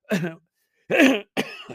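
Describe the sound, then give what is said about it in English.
A person coughs and clears their throat in three harsh, loud bursts, with short silent gaps between them and no talking. “As I cough up a lung, when you go there on Friday.”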